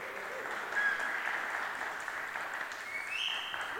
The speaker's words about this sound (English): Pause for applause.